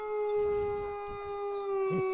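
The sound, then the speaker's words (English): A single long wolf howl holds one steady, clear pitch for about two seconds, fairly loud, with no speech over it and only faint background rumble. “So I'm the lone wolf. Hit the music.”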